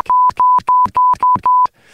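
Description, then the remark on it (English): A run of six loud, steady high-pitched censor bleeps in quick succession, chopping up a burst of speech, with brief clipped fragments of voice audible between each tone. “This is just an absolute beep fest.”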